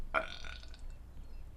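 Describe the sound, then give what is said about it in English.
A single loud baby burp bursts out near the start after the baby is joggled up and down on a knee, a short throaty gurgle that fades within about half a second, leaving quiet room tone with no talking. “Then Baby opened his mouth, and out came a loud burp.”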